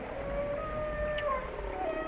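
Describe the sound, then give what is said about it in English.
A whale calls with long, sustained tonal moans and gliding whistles that rise and fall, heard alone over a steady low underwater rumble. “Of course, it looks as though that whale story has had a happy ending. It looks like they've gone out the Golden Gate.”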